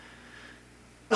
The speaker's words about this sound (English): I just coughed on the mic, and I don't give a shit.